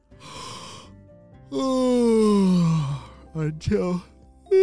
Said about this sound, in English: A whole bunch of yawns just came out of nowhere and attacked him and made him really sleepy. Have you ever had a yawn come out of nowhere and it just makes you super sleepy?